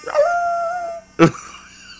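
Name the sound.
people imitating dog barks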